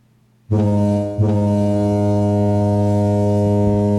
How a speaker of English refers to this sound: I really do think they should start putting car horns like this. It sounds gentler. You know what I mean? Would you care if the New York street sounded like this? Some people think this should be a horn.